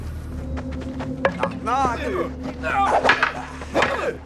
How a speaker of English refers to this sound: Knock.